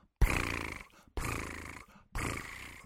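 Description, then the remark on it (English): A person imitates the purr of a cat named Velvet with their voice, making three loud, raspy, rumbling bursts of nearly a second each, separated by short pauses, with no talking. “It's a purr.”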